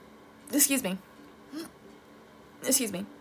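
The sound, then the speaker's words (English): A person clears their throat, three rough, raspy bursts: a long one, a short one, then another long one, with brief quiet gaps between them and no talking. “I had to clear my throat.”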